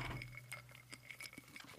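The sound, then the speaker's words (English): Glasses clink together in a toast, a few light, bright taps with a faint ringing tone, fairly quiet, with no talking over them. “Cheers, brother. Cheers, my man.”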